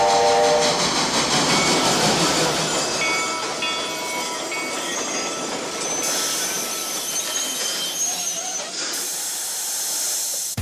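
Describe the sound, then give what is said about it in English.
A steam train hisses loudly and steadily as it pulls away, with a whistle sounding over the continuous rumble and chuffing of the engine, with no voices. “Next song is about a train and we're going for it now.”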